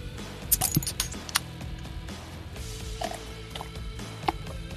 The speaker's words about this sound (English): So let's get to it. Let's open these beers.